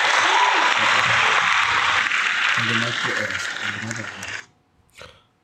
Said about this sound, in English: So shout out to Serena for sure. So let me give her a little bit of a round of applause on that.